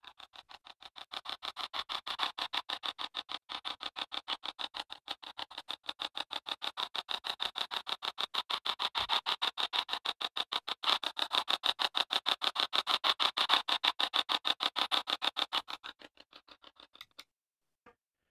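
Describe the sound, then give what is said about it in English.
Spirit box white noise: a steady stream of rapid, evenly chopped bursts of hiss, several per second, at a constant level for about sixteen seconds before cutting out, with no voices. “Now, with a lot of the spirit boxes today, you'll hear something kind of like this, where it's not so much as much radio noise as just kind of a white noise, but listen to this.”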